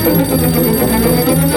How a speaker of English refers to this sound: Sir, the telephone.